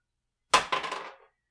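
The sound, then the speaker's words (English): Dice drop onto a table during a tabletop game: a sharp clack, then a second hit and a quick series of bouncing, rattling clicks that die away in under a second. No voices. “Drop the dice, sorry.”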